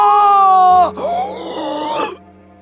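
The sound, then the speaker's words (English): A human voice imitates the faint, strained, muffled scream of a character being engulfed, a wavering groan-like cry lasting about two seconds that breaks off abruptly, moderately loud. “you hear like faint screams from Nalar”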